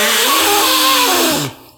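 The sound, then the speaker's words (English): A loud, buzzy fart noise made by squeezing air between the palms, one sustained sputtering blast lasting about a second and a half before cutting off abruptly. No talking. “No, that was me turning into a fart by putting like my fit. My palms.”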